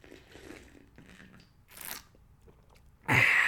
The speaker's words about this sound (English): One moment for a sip of coffee.